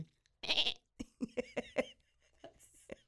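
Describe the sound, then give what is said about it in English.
A person imitates a sheep's bleat: a breathy burst, then a loud, quavering "baa" broken into several rapid pulses, trailing off into softer vocal noises. “Don't you make a good sheep noise? Do it.”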